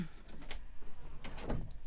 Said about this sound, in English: I just had to get my chair shorter.